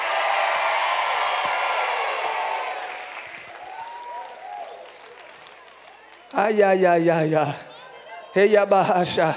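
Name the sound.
audience screaming and cheering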